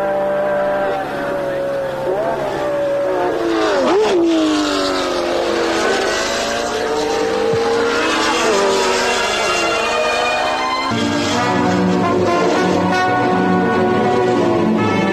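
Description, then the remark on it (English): A loud racing car engine roars, its pitch rising and then dropping sharply as it sweeps past, with more engine drone continuing steadily afterward. It is Jim Clark's Lotus racing car thundering through its last lap to the checkered flag. “Clark now way out in front and going in great style, thundering through on his last lap to the checkered flag.”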